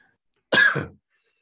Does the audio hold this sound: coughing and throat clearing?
yes